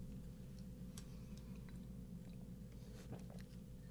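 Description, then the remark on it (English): Quiet mouth sounds of someone sipping coffee, a few small wet clicks and slurps over a steady low background hum, with no talking. “Ah, glory sip of my coffee there.”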